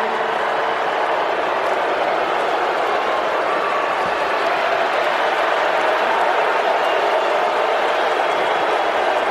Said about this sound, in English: booing from Steeler fans.